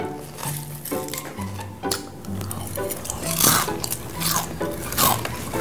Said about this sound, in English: Could you chew any louder?